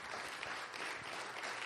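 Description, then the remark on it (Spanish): An audience claps together in steady, dense applause, a continuous crackling wash of many hands that holds its level through the whole moment with no voices standing out. “Démosle un fuerte aplauso a nuestro Señor.”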